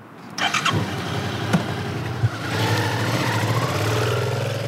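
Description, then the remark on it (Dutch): A motorcycle engine kicks into life, gives a few sharp revs, then settles into a rising, steady roar as a woman rides it away. No one speaks. “daar ging ze, Anne Moser, op de motor”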